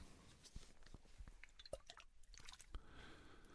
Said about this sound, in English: Give me your wrist. I'm going to pour some cool water for your wrists.